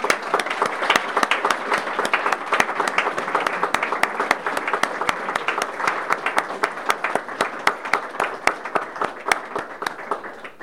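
A steady round of applause from a crowd: many hands clapping in a dense, continuous patter of sharp claps that holds at a fairly even loudness for about ten seconds, with no voices over it.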